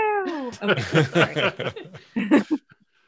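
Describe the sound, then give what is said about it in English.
A cat gives one short, falling meow, then a person immediately starts talking and chuckling over the remaining seconds. “It's like the chillest cat ever.”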